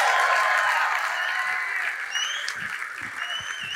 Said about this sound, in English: Stop clapping.